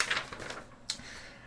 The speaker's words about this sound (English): Flip the paper around.